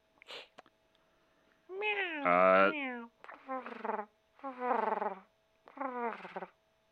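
A cat meows several times up close: a long, wavering, drawn-out cry followed by three shorter meows with brief pauses between them, loud and clear against a quiet background.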